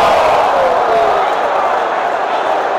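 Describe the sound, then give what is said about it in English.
A large baseball stadium crowd boos loudly and steadily after batter Aaron Hicks is hit up high by a pitch, a dense, sustained roar of disapproving voices filling the whole stretch without letting up. “Crowd booing as if that was on purpose.”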